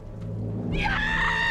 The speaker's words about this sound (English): Yes! And when she looks for biosignatures and finds them, she lets out this amazing scream like, yes!